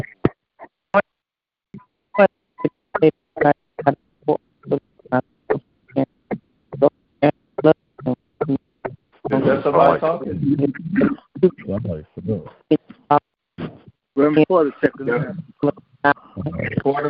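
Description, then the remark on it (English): A phone line echoing back on itself: rapid, evenly spaced stuttering bursts for several seconds, then garbled, overlapping voices smeared together by the repeating echo, fairly loud. “There's an echo on the line.”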